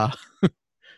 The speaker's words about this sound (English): Excuse me if I'm coughing. I'm still getting over what's most likely coronavirus.